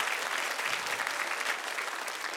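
Steady applause from a church audience giving the Lord a clap offering, a dense wash of many hands clapping at once with no clear rhythm, holding at an even level throughout without speech.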